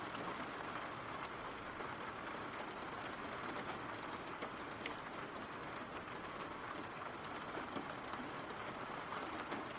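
Steady rain falls without pause, a dense, even hiss spread across the whole range, broken by scattered brighter drop taps. No voices, and the level stays constant throughout.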